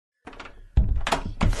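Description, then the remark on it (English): A door swings shut with a solid thunk, followed by a couple of sharp rattling clicks like a lock or latch being worked. No one speaks. “Now lock that door.”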